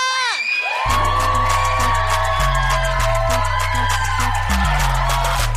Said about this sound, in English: Friends screaming, guys. Oh my gosh.